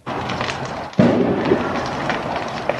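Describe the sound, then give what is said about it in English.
A loud, sharp pop bursts out over a steady roar of crackling fire, followed by a couple of fainter pops: windows bursting in a blazing house fire at night in East Vancouver. “Windows were popping like it was an inferno.”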